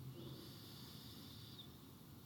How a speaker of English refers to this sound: Breathing in. Breathing out. Breathing in. Breathing out. And once more, breathing in.